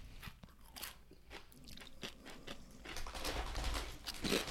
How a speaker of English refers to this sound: This is too many because we're eating so many chips. See, I just do a smaller amount. I simply pour a smaller amount out because I want to eat less. Ooh, these are spicy.